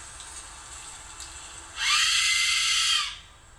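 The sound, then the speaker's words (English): A man blows an Aztec death whistle at full volume in the middle of the woods: a harsh, piercing shriek sounds loudly for about a second, a noisy, scream-like blast rising abruptly and cutting off, with quieter background hiss before and after. “This is a video of a man using a death whistle in the middle of the woods, so no one's really going to hear it, but you guys are going to hear it firsthand.”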